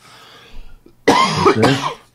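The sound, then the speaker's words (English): A single loud cough bursts out after a short quiet stretch, rough and throaty with a brief catch in the middle, ending in a fading rasp. “Cough button.”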